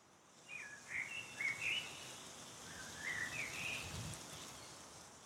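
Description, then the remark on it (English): Soft birdsong drifts in as two short, warbling phrases of chirps, gentle, over a steady hiss of breeze-like background noise on a breezy day. “You hear the sweet birds gently chirping and singing their songs.”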